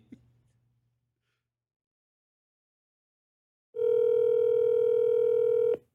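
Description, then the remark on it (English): A single steady electronic ring tone on an outgoing phone call to a man who does not pick up, lasting about two seconds, loud and clear on the line after a quiet pause, with no voices. “Will he pick up?”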